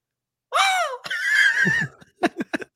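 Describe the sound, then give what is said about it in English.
A voice imitates the scream of a man thrown off a motorbike going at 60 miles an hour when its electricity cuts out: a loud, rising-and-falling wail lasting about a second and a half, followed by a few short, choppy vocal bursts. “the electricity cuts out and he just flies off the bike and he screams like this.”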